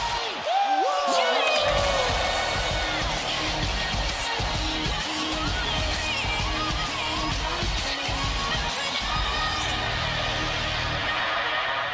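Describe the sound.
A record-breaking WrestleMania stadium crowd in Texas chants in unison, a loud, dense roar of thousands of voices that holds steady for about twelve seconds, with some shrill whoops rising near the start.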